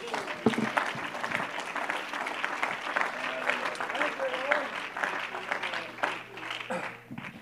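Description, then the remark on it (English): An audience breaks into sustained hand clapping in praise of God, a dense, steady roar of many hands with a few voices mixed in, tapering off near the end. “Now let's give a hand clap unto him.”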